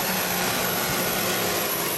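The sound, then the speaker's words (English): A truck engine at a tractor pull roars loudly and steadily as it blows up, a dense, unbroken wall of mechanical noise, with no voices heard. “The video is of a tractor pull and truck blows up.”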